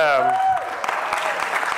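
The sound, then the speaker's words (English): Audience clapping: a steady, dense patter of many hands that swells in right after a brief voice at the start and carries on at an even, moderately loud level. “I've never gotten this many claps in my life about anything, so this is great.”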